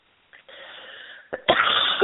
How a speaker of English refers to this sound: Excuse me for coughing. I have a sip of my tea.